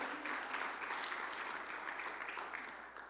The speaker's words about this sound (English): You can give the Lord a hand clap of praise. He is worthy.